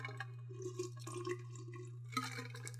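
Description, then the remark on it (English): Irregular wet drips and small splashes of water fall every half second or so over a steady low electrical hum, with a brighter splashy burst near the end. Fairly quiet, no voices. “Oh, this is water.”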